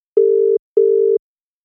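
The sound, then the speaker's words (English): A telephone ringback tone sounds twice, each a steady, mid-pitched hum lasting under half a second, separated by a short gap, with no voices. “So we're going to. Yeah, we'll call him here.”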